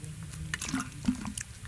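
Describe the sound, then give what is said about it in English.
Someone takes a quick drink of water: soft wet sips and swallows, a couple of small liquid clicks, ending with a sharp burst of breath or contact. “Sorry, water is good.”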